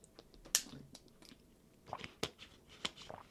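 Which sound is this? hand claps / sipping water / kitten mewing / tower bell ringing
sipping water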